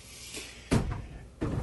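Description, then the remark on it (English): A washing machine soap drawer is pushed shut after soap is added, making two plastic thuds with a brief sliding rattle between them, loud, with no talking. “All right, so we got the soap in so I can now close this drawer.”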